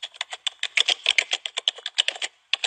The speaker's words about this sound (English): When they're typing in the yellow guy's name, they just do millions and millions of letters.